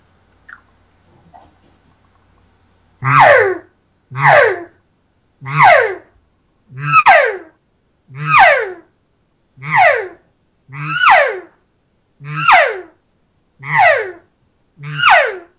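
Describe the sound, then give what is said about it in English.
A human voice imitates a cat's vibrating call, made by vibrating the vocal cords, giving ten loud, evenly spaced calls, each a buzzy, throaty sweep that slides downward in pitch, following a short quiet stretch. “is a sound that kind of comes out when you've got the right vibration going with your vocal cords, and it's like this”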